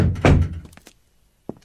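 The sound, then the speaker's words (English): A door of an upstairs room in a house swings shut with a heavy thunk, followed by faint rattles of the latch and a second softer knock as it settles into the frame. “Should we close the door? Yes, let's leave everything as we found it.”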